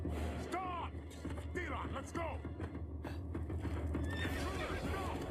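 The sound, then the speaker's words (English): Horses whinny repeatedly with high, wavering neighs over a steady clatter of hooves clip-clopping, loud against a rumbling background. “Horses on the moon.”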